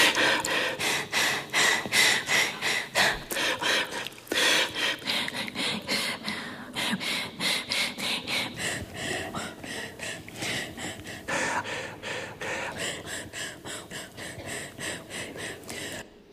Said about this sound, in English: Somebody wanted to hear this yesterday. Isolation studies of NPR breathing.